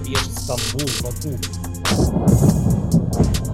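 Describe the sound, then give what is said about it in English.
Multiple missile strikes on Kharkiv, Ukraine, overnight rumble like rolling thunder, a deep, heavy roar that swells about halfway through and keeps churning to the end, after a brief wavering tone at the start. “Ukraine's second city, Kharkiv, overnight, the rolling thunder of multiple missile strikes.”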